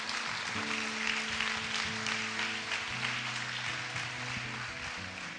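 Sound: audience hand clapping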